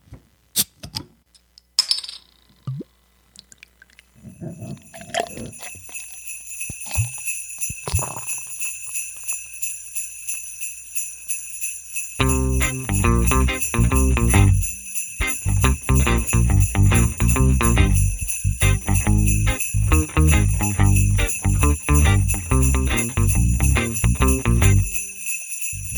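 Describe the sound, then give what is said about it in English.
Jingling bells with bright metallic tinkles, scattered at first, then a loud rhythmic beat with deep bass kicks in halfway through and the jingling continues steadily over it. “We are, if you can't tell by the jingling bells, still doing shows, even though I think today for you guys is Christmas Eve.”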